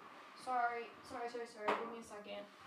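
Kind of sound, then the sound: impact, water bottle knocked over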